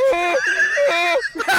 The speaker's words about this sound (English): We're down here in Macon, Georgia today with a donkey named Buster, and we're going to see right where he's fixing to giggle and laugh.